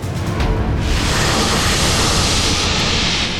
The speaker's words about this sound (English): Then a loud hiss made Thor freeze. His face went pale, and a cold sweat dampened his tunic. He slowly turned. A massive tower of scales stretched up far into the sky.